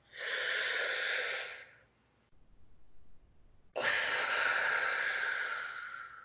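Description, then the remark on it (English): A deep, airy inhale lasting over a second, a brief pause, then a long, forceful exhale that tapers off, fairly loud with no talking, taken as a guided breathing exercise after a count of one, two, three. “And we'll breathe out all the other negative crap.”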